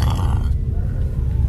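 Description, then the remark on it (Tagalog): A low, rough grunt of a black pig, a continuous deep snorting rumble that is loud throughout and a bit brighter and raspier in its first half, with no talking over it. “Pabalik na daw sila sa bahay nun nang bigla silang makarinig ng huni ng baboy.”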